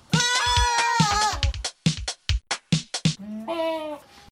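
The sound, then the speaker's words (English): A person's voice mimics a goat, giving a long wavering bleat, then a quick string of short choppy bleats, and finishing with another drawn-out quavering bleat, loud. “did all of the goat impressions for him.”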